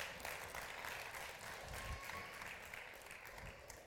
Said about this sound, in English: Thank you. Let's applaud the Lord Jesus Christ. Come on. Come on. Come on.